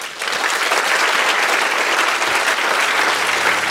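Sustained applause from an audience, a dense crackle of many hands clapping at once, steady and fairly loud from start to finish with no voices above it.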